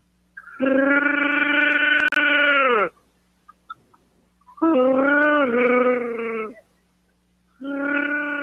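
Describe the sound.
A person imitates a Wookiee roar as an entry in a Wookiee roar contest: loud, throaty, wavering howls in three long bursts, the last cut off at the end, with brief pauses between and no talking.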